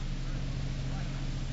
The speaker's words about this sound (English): Motorboat. Yeah. Making this way, too. Let's not give the boys a false alarm until we're sure it's the boat we're looking for. That's it, all right. It's cutting in this way.